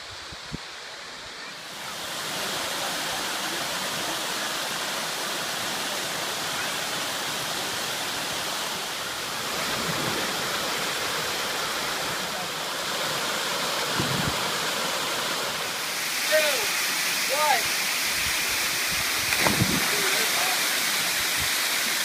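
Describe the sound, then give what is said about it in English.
A creek running full with snowmelt in August in the Cascades east of Seattle rushes loudly and steadily, a dense continuous roar of water that swells in after a brief quiet moment, with faint, brief higher sounds breaking through near the end. “They hiked alongside of a creek that was running full with snowmelt.”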